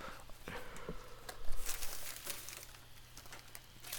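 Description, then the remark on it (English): A bag on a desk, accidentally bumped, dumps its contents onto the floor with a burst of crinkling and rustling, crisp plastic-like crackles coming in irregular clusters over a low steady hum, moderately loud. “Because I had a bag on my desk and it just all dumped out on the floor.”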